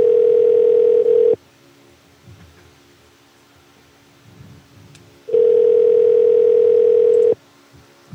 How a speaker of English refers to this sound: You know, the associates aren't ever doing shit. So how come they can't answer the damn phone?